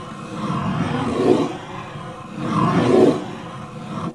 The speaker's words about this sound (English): She places a clean piece of paper over a round standing drum. I'll play something acoustically for you. She starts to move the pencil in a circular motion on the page.